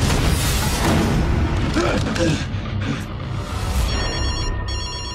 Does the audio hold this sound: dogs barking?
no